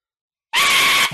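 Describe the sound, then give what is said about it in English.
After a moment of silence, a single loud, shrill whistle call mimics a screaming fox, bursting in abruptly and holding a harsh, steady screech for about half a second before cutting off. “If you guys are ready, I'll give this a whistle.”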